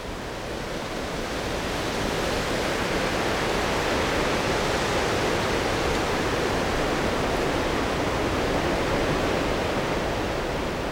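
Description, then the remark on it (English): A steady, full rushing of wind through the birch, alder, oak and ash trees of an old alluvial woodland on the shores of the Garavogue River in County Sligo. A broad hiss holds evenly for the whole stretch, with no voices and no clear gusts or pauses. “What we're listening to is the sound of the wind through the birch, alder, oak and ash trees of an old alluvial woodland on the shores of the Garavogue River in County Sligo.”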